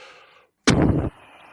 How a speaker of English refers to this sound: My fucking front door gets blown the motherfuck in.